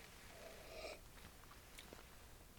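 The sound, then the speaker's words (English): A single quiet slurping sip of turkey tail mushroom tea lasting about a second, followed by a few faint mouth clicks or a soft swallow. No one speaks. “In fact, I'm going to take a little sip.”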